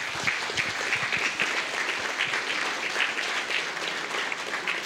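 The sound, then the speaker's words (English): A room full of people clapping steadily at the Motherwell and Wishaw 2019 general election hustings, applauding ASLEF Motherwell and North Lanarkshire Trade Union Council; a dense crackle of many hands at an even level from start to finish with no voices breaking through. “So a round of applause for them, that would be brilliant.”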